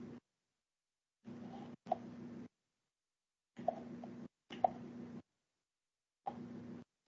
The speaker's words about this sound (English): What is that clicking with noise? I don't know. I was kind of wondering. Sounds like somebody is eating something in a cup. Or almost like the clip-clop of a horse.